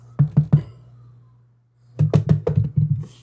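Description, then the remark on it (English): Hollow, resonant knocking: three quick raps, a brief pause, then a faster run of about half a dozen knocks, fairly loud with no voices. “This one sounds hollow. Are you tapping barrels?”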